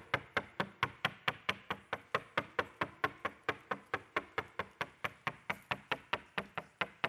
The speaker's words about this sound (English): You annoyed yet? Like just keeps coming and coming and coming and coming and coming and just keeps knocking. Knocking, knocking, knocking, knocking, knocking.